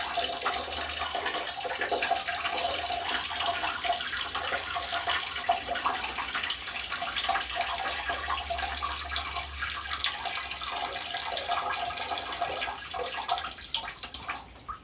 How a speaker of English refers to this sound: Yeah, you are taking a while to summon your pee. Are you like nervous?